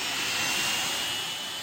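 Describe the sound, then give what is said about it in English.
A jet plane taking off, its engines roaring in a steady, dense rush of noise, loud and unbroken for the whole moment, with no voices over it. “As much as a plane taking off.”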